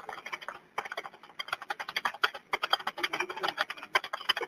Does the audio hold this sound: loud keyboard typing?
yes